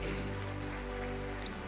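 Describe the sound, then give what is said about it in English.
A church audience claps their hands for the Lord on Resurrection Sunday in a dense, steady patter of applause, layered over sustained musical tones that hold throughout. “Let's give the Lord a one big hand clap again.”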